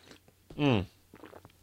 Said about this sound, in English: I'm gonna have a sip of coffee.